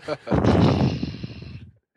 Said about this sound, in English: I think it sounds like you're heavy breathing in the microphone.